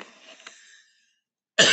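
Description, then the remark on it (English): A person coughs, a short rough burst that trails off into silence, followed by another sharp, loud cough starting at the very end. “So you'll hear me cough.”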